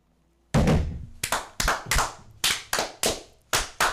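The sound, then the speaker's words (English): A Masonic ritual round of hand clapping called 'fire', performed in unison by lodge brothers to honour a brother's engagement: about nine sharp, loud claps in a steady, deliberate rhythm, each with a brief ringing tail, and no voices. “Ready. Aim. Fire. Good fire. Fire all.”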